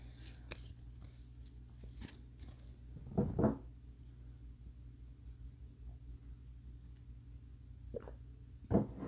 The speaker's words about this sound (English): Ooh, wow, that was a big chunk of cards. So what I'm going to do now is I'm going to shuffle this big chunk of cards and see if anything comes out of it. If not, it just means that all of the cards are relevant to the reading.